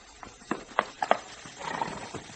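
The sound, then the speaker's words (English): A horse's hooves clip-clop in a short, uneven run of sharp knocks, moderately loud, followed by a softer shuffling rustle as the animal settles. “Don't get up till I get off this horse.”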